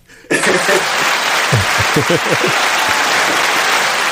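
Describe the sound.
A hand-clap sound effect: dense, steady crowd applause bursts in abruptly and holds loud to the end, with a few brief cheering voices rising under it midway.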